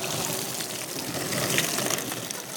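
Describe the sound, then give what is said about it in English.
Shallow ocean waves rush and fizz over a person's feet in a steady wash for a few seconds, a continuous hiss of surf with no voices over it. “The waves came. They were real. They happened.”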